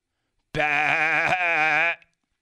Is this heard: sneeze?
no